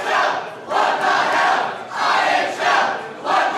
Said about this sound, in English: There was a hotty-totty chant, and then he says this chant broke out with people saying, what the hell, IHL? Here's what it sounded like.